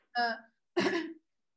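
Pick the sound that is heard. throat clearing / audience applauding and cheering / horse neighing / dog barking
throat clearing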